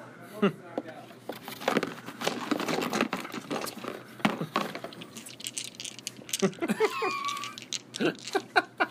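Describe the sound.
Dice, a six-sided and a twenty-sided die, clatter and rattle in quick, irregular bursts of sharp clicks, steady for several seconds, with a voice briefly murmuring underneath toward the end.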